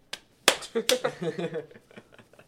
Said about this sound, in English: Let me smush some macaroni together to imitate the noises.